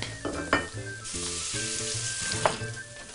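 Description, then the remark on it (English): Chicken livers sauté in a hot pan of shimmering extra virgin olive oil over high heat, with a steady, crackling sizzle, broken by two brief sharp clinks or stirring scrapes; no one speaks. “So now that our chicken livers are sauteing, we can go ahead and work on the rest of our dish.”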